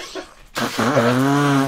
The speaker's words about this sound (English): You all right there? That sneeze and all came out my nose. You ever done that?